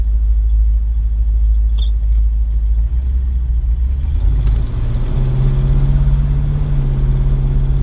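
A car engine idles with a deep, steady, loud rumble; about halfway through its low drone settles into a firmer, even hum. No one speaks.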